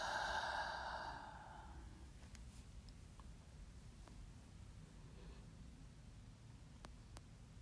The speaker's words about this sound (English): Taking a deep breath in through the nose, receiving all of that beautiful oxygen, breathing out through the mouth.